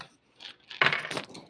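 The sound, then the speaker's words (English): Dice rattle and clatter across a hard surface as they are rolled for a listen roll in a game, a short tap followed by a busier burst of clicking that settles quickly. Fairly loud, with no voices. “Come on, dice.”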